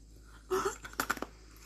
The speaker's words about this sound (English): It's not my teeth squeaking, it's the ice.